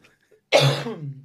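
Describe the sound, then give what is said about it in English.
A single forceful cough from someone eating popcorn bursts out after a brief quiet moment, popcorn coughed into their hand, trailing into a rough, throaty rasp that fades over the next half second. “I just coughed popcorn into my hand.”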